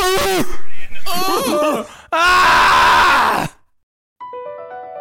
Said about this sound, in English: This is the most unenergetic ending. Somebody scream or something.